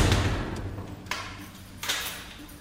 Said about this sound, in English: The door is slammed shut and another day is over.